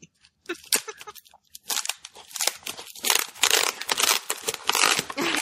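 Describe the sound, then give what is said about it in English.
Packing tape being ripped by hand, a little at a time rather than cut with scissors, off a wrapped package, with loud rasping tears and crinkling paper coming in repeated bursts that grow longer and more continuous toward the end. “It's got, like, the good packing tape on it.”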